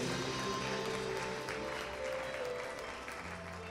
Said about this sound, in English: Let's give him a clap offering. Amen.